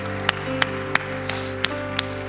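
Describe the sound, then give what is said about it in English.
An audience claps for two people who raised their hands to accept Jesus Christ, in a steady, even rhythm, about seven sharp claps in a row, over a sustained low musical drone. No one speaks. “Can we give these two individuals that raised their hands a huge round of applause?”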